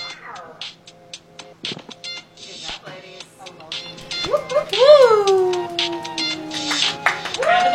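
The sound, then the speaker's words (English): A cat meows, a drawn-out wavering cry that rises and then slowly falls, with a few shorter calls and scattered clattering and voices around it. “Also, don't forget the cats. The cats are here.”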